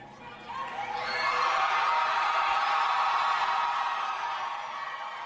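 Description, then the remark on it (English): A large rally crowd in El Paso roars and cheers for Beto O'Rourke as he speaks after losing his Senate campaign against Ted Cruz, in a sustained wave, building quickly and holding loud for several seconds with scattered whoops and shouts before easing slightly. “The crowd is acting like they're at a rock concert.”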